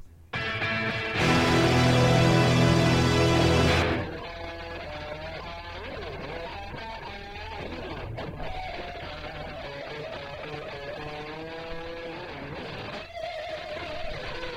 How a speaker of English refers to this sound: All right, listen to this guitar solo.